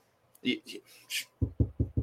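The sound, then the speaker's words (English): Four quick, evenly spaced solid knocks on wood, following a brief stretch of voice or breathy vocal sounds. “Yeah, I mean, but really, I was knocking on wood, if anybody can. Yeah, hear.”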